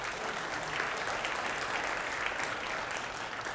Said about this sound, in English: I mean, the safety measures that South Bay has put in have been wonderful. Amen? They're good. Amen. Let's give the leadership a hand clap for that.